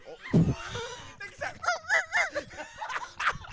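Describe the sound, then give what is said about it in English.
A man's voice imitates a small dog yapping, sounding like a chihuahua, giving a quick series of high, strained yips and whines, with a louder yelp near the start. “He sounded like a chihuahua.”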